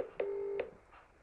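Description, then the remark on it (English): A single phone keypad tone from dialing a number holds steady for under half a second, bracketed by soft clicks at its start and end, fairly quiet and alone with no talking. “Do plus 4, 4. No, it just didn't ring. So my phone sometimes does that for some reason.”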